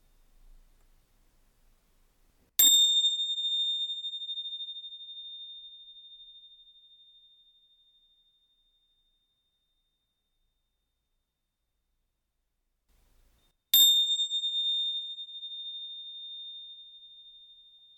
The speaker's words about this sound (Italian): Facciamolo ancora 2 volte e ponete l'attenzione sul suono delle campane come se fosse la cosa più importante del mondo in questo momento.